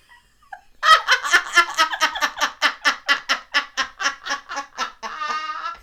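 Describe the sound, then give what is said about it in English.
A voice imitates a creaky door: a loud string of rapid, rhythmic rasping pulses that spaces out slightly, ending in a drawn-out buzzy creak, with no other talking. “Or a creaky door. You ready? Creaky door. Creak.”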